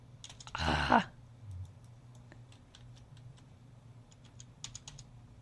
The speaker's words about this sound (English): Sorry, my keyboard is... the battery's going dead on my keyboard.